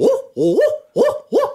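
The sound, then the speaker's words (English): A person imitates an owl with four loud hooting calls in quick succession, the second drawn out with a rising, wavering pitch. “Let me hear your best owl hoot.”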